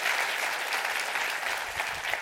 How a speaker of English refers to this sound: That's what it's about. Come on, clap your hands. That's what it's about.